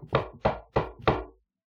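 Four firm knocks on a door in an even, steady rhythm, fairly loud, each with a short resonant decay, then silence.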